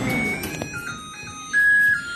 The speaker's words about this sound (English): My favorite, I have to say, was the happy microwave oven. Let me give it to you one more time. I love that.